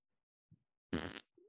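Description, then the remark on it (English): A single loud, buzzy fart noise made by Will Middlebrooks blurts out for about a third of a second, raspy, with a few faint soft thumps before it and a short low squeak after. “Fart noise.”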